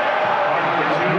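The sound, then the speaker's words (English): An arena crowd at a Utah Jazz versus Houston Rockets basketball game oohing and aahing, a loud, dense wash of many voices that holds steady for just over a second without any single voice standing out. “91-80, crowd oohs and ahs like that must have been illegal.”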